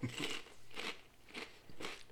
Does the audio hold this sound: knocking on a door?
no